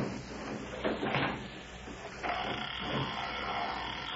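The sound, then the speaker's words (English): A heavy gate swings open with a few rattling clunks, then a sudden louder shift into a steady, grinding creak that carries on to the end. No voices are heard. “Open these gates.”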